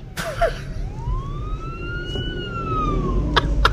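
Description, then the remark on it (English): A fire truck siren wails past outside, its long rising and falling tone sweeping through over steady low traffic rumble, with a couple of sharp clanks near the end. “Plenty of sirens.”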